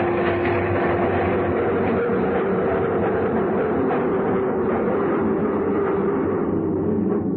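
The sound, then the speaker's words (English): A train rumbles steadily as it pulls into the 59th Street station, with a constant mechanical drone and faint rattling, loud throughout, with no voices. “We got off the train, and he hurried across the dark, deserted platform.”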